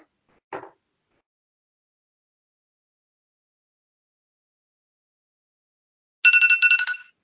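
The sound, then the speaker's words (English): After a faint tap and several seconds of silence, a public comment timer at a San Francisco commission meeting rings: a short, rapidly pulsing electronic trill, fairly loud, lasting under a second. “So I'm going to go ahead and set the timer.”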